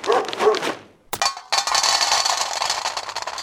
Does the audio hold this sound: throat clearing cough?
no